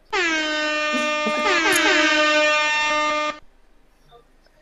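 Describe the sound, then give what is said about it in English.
A loud, brassy air horn sound effect blares in one sustained blast of about three seconds, its pitch wavering briefly midway, then cuts off abruptly into near silence. “You need that sound effect, Blanco. Yeah. The horn. The beep, beep, beep, don't we have it?”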